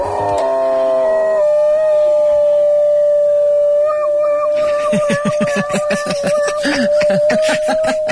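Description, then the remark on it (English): A dog lets out a long, loud, wavering howl that rises and holds like a siren, then breaks into choppy, yelping cries toward the end. “However, it's not fire engine dog.”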